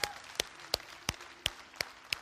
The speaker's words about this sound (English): You can stand up. I think you should stand up for the man and give him some applause as he's coming today, man.